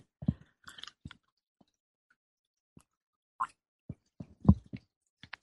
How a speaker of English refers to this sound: And take a sip of my tea here.